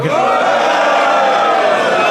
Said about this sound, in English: Some crowd sounds, please. Very loud now.